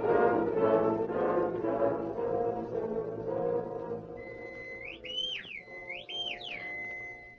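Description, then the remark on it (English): A shrill, bird-like call whistles twice in rising and falling swoops, clear, after a stretch of busy, murmuring background sound; it may be a person whistling in imitation of a bird. “Kind of a bird, Abby.”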